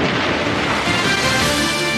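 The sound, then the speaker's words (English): Loud, dense rumbling explosions from the opening titles of a show's video roll together into a continuous booming wall of noise for about two seconds, with no clear gaps between blasts and no voices. “Okay, so there are a lot of explosions and huge globes emerging from a kind of primordial soup of news.”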